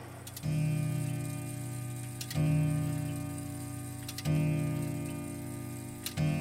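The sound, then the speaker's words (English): A clock ticks 5:30, slowly and steadily: four loud, sharp ticks about two seconds apart, each followed by a low, resonant hum that rings on until the next tick. No one speaks. “Finally, the clock ticks 5:30.”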